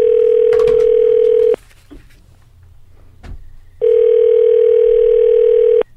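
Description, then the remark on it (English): A steady, loud telephone dial tone hums for about a second and a half, gives way to a few quiet clicks and taps of dialing, then the tone sounds again for two seconds. No voices. “Let me see if I can get him on the phone.”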